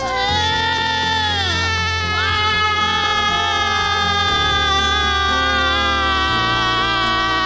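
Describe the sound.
A loud voice imitates a newborn's wailing cry in long, sustained, wavering tones with rising and falling pitch, over a steady low hum, with no words spoken.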